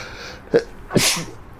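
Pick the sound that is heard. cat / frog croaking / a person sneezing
a person sneezing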